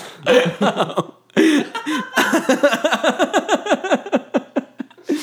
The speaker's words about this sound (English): I'm coughing so much.